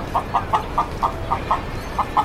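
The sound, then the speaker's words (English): A woman's voice imitates a chicken with about nine quick, evenly spaced clucks in a steady rhythm, moderately loud over a faint background hum, with no speech. “She comes in and goes, chicken, chicken, chicken, chicken, chicken, chicken, chicken.”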